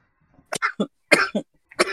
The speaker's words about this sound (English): You just coughed. I just made you cough that whole bowl, bro.